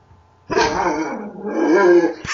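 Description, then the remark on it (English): A dog barks loudly, two drawn-out, harsh barks running almost together after a brief quiet start, with no one talking. “And there's Cat's dog.”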